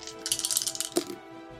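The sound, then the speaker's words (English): Dice clatter and rattle across a hard tabletop in a quick burst of bright clicks as a player rolls damage dice (2d6 plus 2 piercing and 1d6 thunder) in a tabletop game, ending with a sharper knock as they settle, then quiet. “Roll the Ooh, damage.”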